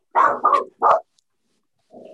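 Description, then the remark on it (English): A running dog lets out three loud, quick barks in a row, then falls silent before a low, rumbling growl begins at the end. No one speaks. “Was the dog an artist or something?”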